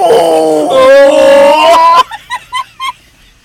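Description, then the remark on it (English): A voice imitates a whale call: a long, strained, rising moan for about two seconds, then four short, bright hooting bursts that fade out. “Nobody in bed is like, oh god, baby, please sound like, make a whale noise.”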